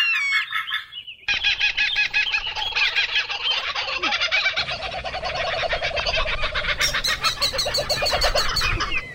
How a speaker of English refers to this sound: Those are the birds laughing as Chrissy drowns Lucas.